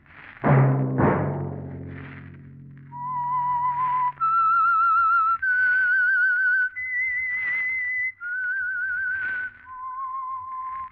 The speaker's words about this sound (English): Let that whistle be your signal for the Signal Oil program, The Whistler, each Wednesday night at this same time.